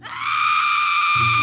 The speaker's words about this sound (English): The wildest, most piercing and terrified shrieks that had ever sounded within the highly respectable walls of Hagley House reached the ears of the little band of servants below.